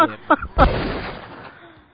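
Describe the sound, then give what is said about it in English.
A single loud gunshot sound effect bursts out and trails off in a long, fading reverberant tail, as if following the bullet until it hits a person, with a couple of brief vocal fragments just before the shot. “Sounds like you're literally following the bullet until it hits the person.”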